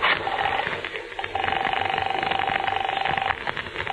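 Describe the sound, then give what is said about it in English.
A telephone rings in two bursts, a short one and then a longer sustained trill, heard over a dense, noisy background with some muffled voice activity. “Where's the phone?”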